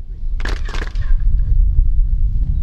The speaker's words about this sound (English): The pyramid at Chichen Itza towers over the landscape. Sound echoes as tour guides clap to demonstrate the extraordinary acoustics of the sacred place.